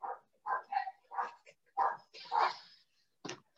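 A dog barks repeatedly in short, uneven bursts, about half a dozen yappy barks, with a brief whiny edge to some and short pauses between them.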